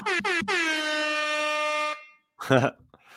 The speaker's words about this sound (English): Nice. I've missed the air horn,